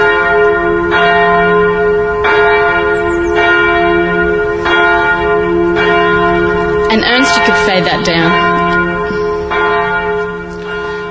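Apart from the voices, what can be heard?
church bells ringing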